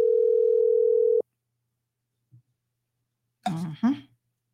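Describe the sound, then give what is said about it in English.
A steady telephone dial tone hums for about a second as a phone call is placed, then cuts off abruptly, followed by silence, a faint click, and then a brief burst of speech. “So let's just give him a call on the fly if he's available.”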